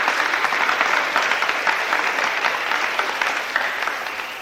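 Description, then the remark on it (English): An audience at a glory meeting claps steadily and fairly loudly for several seconds, a dense patter of many hands with no voices standing out. “Give her a clap.”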